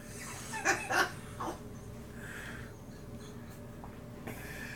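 A dog lets out three short, soft yips in quick succession near the start, then falls quiet over a low steady background hum. No one speaks.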